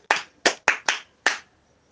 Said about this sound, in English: That's good. Clap for yourself again.